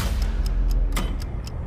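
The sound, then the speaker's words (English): A clock counting upwards in a video game trailer ticks steadily, about four crisp ticks per second, with one tick louder than the rest, over a deep, continuous low rumble. No one speaks. “It's a clock. Counting upwards.”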